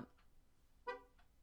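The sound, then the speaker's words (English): A single short car horn honk, brief, with a couple of fainter toots before and after against quiet background noise; no one speaks. “A car just honk made a noise, time, just so you know.”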